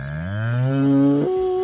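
A single long cow moo, loud, rising in pitch and then holding a steady harmonic tone before ending abruptly, with no talking.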